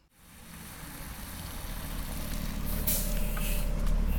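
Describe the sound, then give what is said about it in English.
A Chapel Hill Transit bus rumbles in, its deep engine growing steadily louder as it slows to a halt at the stop outside UNC's ROTC Naval Armory where commuters wait, with a short hiss of air brakes near the end. No one speaks. “A bus from Chapel Hill Transit slows to a halt at the stop outside of UNC's ROTC Naval Armory, where commuters await their ride.”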